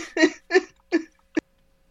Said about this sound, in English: I made her laugh so hard she's coughing.